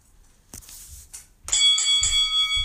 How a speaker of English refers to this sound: Delayed bell there, sorry. We're on a tape delay.